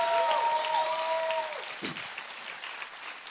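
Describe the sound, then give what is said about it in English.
An audience breaks into steady applause, clapping their hands to thank God, many hands clapping together in a dense, sustained patter, with faint tonal sounds and a brief voice mixed in near the start. “Come on, somebody ought to clap your hands and thank God.”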